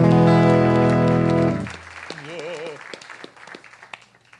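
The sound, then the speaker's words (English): A loud sustained musical chord rings out and stops, then scattered, fairly quiet applause for a band member follows with uneven claps and a short wavering whistle or voice in the middle. “He gets too much applause.”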